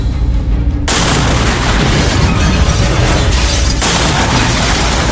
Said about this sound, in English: Or not! The security doors holding Batwoman explode as the drone army enters the Belfry Tower.